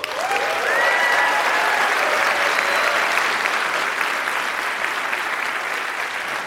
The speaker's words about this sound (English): So let's get started. Let's meet and applaud our debaters. First, arguing for the resolution tonight will be IBM Project Debater.